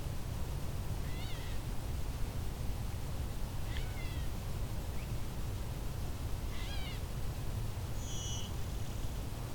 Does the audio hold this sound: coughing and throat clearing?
no